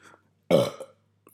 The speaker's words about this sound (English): Maybe that's a part of ASMR. Do you burp? Is belching in there?